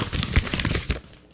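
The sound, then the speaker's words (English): Paper crinkles and crumples in a quick, dense burst of crackling rustles lasting about a second, then tapers off into quiet. “snatched that paper up. Did indeed, and crumpled it up. Crumpled it.”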